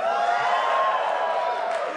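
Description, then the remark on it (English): A crowd erupts in sustained applause and cheering after being asked how many have seen the Shining documentary, a dense, steady roar of clapping mixed with scattered whoops, loud and continuous for the whole stretch with no speech over it. “See, it's too easy an applause getter.”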